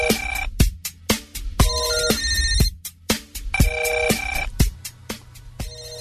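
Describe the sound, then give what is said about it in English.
A telephone rings live on air with a bright, melodic electronic ringtone, a repeating pattern of quick chiming notes with sharp attacks. It sounds loud, playing continuously with no voices. “Telephone. Live on the air.”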